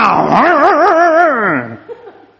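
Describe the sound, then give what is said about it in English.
A voice imitates a chainsaw roaring to life after a hand pull-start: a loud, buzzing vocal drone that wavers up and down for under two seconds, then drops away into a brief quieter breath. “So he takes the chainsaw and he gets the hand pull and he gives it a good pull like that. And the chainsaw roars into life.”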